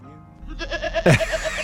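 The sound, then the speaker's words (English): A goat lets out a loud bleat with a quavering, tremulous pulse, breaking into a sharper cry near the end before wavering on; no one speaks. “Hey, man, listen, goats are awesome.”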